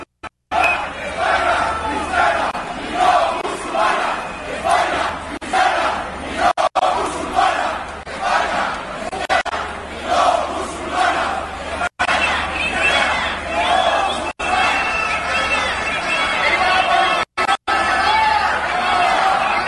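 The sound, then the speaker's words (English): A large crowd of protesters in Spain chants "Spain is Christian, not Muslim" in loud, rhythmic unison, voices rising and falling in repeated surges over a steady roar of shouting, as police use water cannons and tear gas, with a few abrupt cuts breaking the sound. “Apparently, they were chanting, Spain is Christian, not Muslim.”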